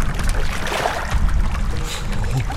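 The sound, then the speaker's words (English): People wade into a pool of water that is nearly up to their chests. Water sloshes and churns continuously as bodies move through it, a steady splashing with low rumbling swirls and no voices. “I think, Arthur, this is a pool of water.”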